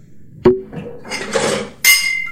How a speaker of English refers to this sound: And that, I think, is worth toasting. So cheers.